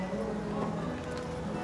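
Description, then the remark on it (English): Slow, steady clip-clop of the hooves of dark brown horses drawing a black carriage that bears Lewis's flag-wrapped casket, with the slow churn of the carriage wheels, under a continuous low hum with faint voices of mourners in the background. “You hear the slow footsteps of the horses and the slow churn of the carriage wheels.”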